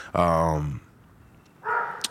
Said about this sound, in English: Well, there's the dog barking in the background. Okay, there's another one.